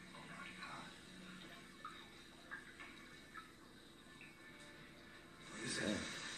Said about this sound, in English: That garden hose is working double time.